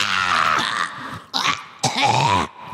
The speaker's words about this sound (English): Ooh, just gotta clear my throat and get ready to dig on in today.